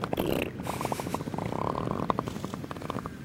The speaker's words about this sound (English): I think the little baby elephant seals are talking to their mums, making sure they don't go too far away.